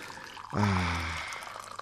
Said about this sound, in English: We've got another pot here. In fact, I better pour it while we're at it, because people will be... Brace yourself, everyone. That's right, here we go.